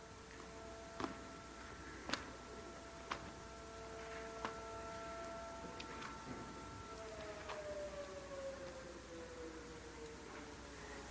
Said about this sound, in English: I didn't even plan for the siren to go off in between the awkward page turning. It's probably the only time you'll get some musical accompaniment.